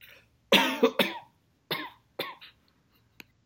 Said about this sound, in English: I'm sorry. I got the coughing.